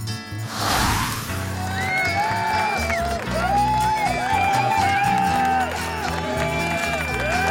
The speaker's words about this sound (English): That was a very nice applause I got there. Yeah. Do you know what? Everyone gets the same applause.